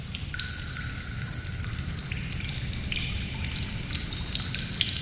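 Water drips steadily in a dark cave with no light, many small scattered drops and ticks falling at an irregular pace over a constant low rumbling background, with no voices present.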